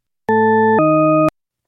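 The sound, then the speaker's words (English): Two steady electronic tones from a paired-tone listening test play back to back with no gap, the second at a different pitch from the first, each about half a second long, loud and clean with no speech. “So here are a set of paired tones. All we need to do is tell if they're going up or down in pitch.”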